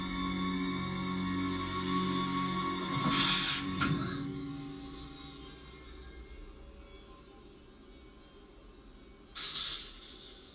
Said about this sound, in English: That's a real snake.